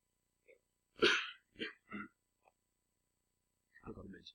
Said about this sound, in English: Sorry, I keep coughing. It's week old cold clearing, rather than fresh infection.